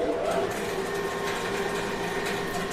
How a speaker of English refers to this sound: Let's fire up the conveyor belt.